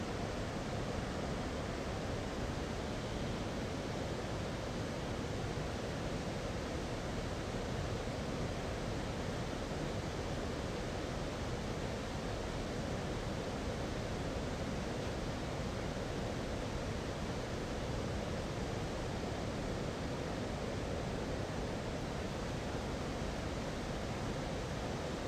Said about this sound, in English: please close your eyes and just take in the sounds of nature. As my brother would say, the cascading waters